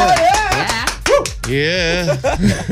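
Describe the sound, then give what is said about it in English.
A short burst of fake applause on the 947 Breakfast Express radio show: a few scattered claps mixed with whooping, cheering voices that rise and fall, sounding staged rather than a real crowd. “that was the fakest applause ever.”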